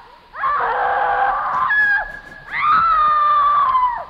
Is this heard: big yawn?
no